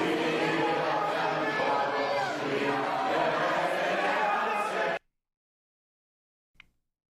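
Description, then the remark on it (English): A dense, loud crowd of many overlapping voices at a protest rally roars steadily for about five seconds, then cuts off abruptly into silence, broken only by one brief faint knock. “Tell me, is this pro-Palestine rally or BLM?”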